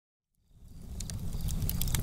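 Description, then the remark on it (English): A crackling campfire rises from silence into a steady low roar, with sharp, irregular pops and snaps scattered over it and no voices. “Campfire.”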